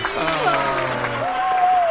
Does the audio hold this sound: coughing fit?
no